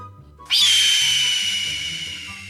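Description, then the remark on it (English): A red-tailed hawk lets out one long, harsh, raspy scream that bursts in loudly, starts high and slides slightly downward, holding for about two seconds over a low hum. “That is a red-tailed hawk, because yep. red-tailed hawks sound awesome, and bald eagles kind of do not.”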